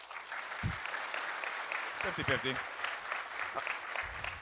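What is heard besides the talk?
audience applause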